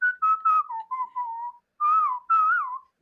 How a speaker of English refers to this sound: Oh my god. I know, it's so random. That is so cool. Oh my god. You're not just like a whistler. You're like a full-on whistler. You're a whistler.